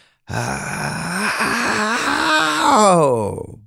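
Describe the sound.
A single voice imitates an excited golf crowd reaction: a loud, drawn-out vocal swell that wavers in pitch, builds toward the end, then fades, with no words spoken.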